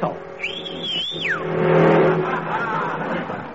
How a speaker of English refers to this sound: Did you see that? Wouldn't stop, and he had an empty cab. Huh. And he was going about 40.